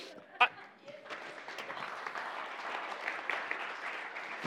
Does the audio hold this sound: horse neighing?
no